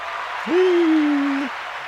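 A steady patter of applause fills the whole moment, with one long, sustained low whoop of cheering rising over it for about a second before fading back into the clapping.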